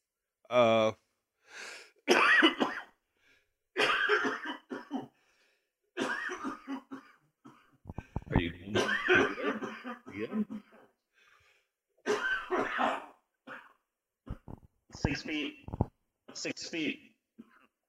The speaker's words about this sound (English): You can cough as much as you want